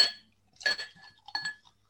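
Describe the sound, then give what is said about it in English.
Glass clinks three times in quick succession, bright and ringing, each hit trailing off quickly, as beer is poured into a glass; a fairly quiet handling sound with no one speaking. “I'm going to pop this one in my dad's glass as well.”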